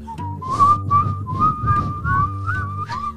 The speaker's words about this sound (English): You gonna whistle? Because I can't whistle.